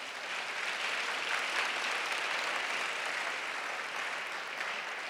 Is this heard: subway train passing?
no